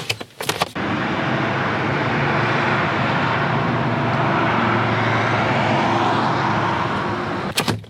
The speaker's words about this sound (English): The skies might be free from planes, but that highway is still pretty busy.